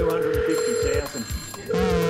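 A bright electronic telephone ring chirps in two loud bursts, with a short pause between them and faint voices murmuring underneath.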